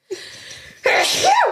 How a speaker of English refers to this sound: Fuck, this sneeze is in my nose. That's where they all come from.